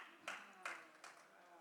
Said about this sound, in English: I don't want your hand clap for me.